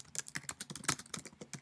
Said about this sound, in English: You can hear me typing now, it's great. Complete commitment.